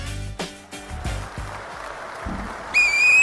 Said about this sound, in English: No, it's not a flag. It's a timeout. Yeah. No, you gotta do I this. Call the timeout, and then you blow the whistle. We all do it.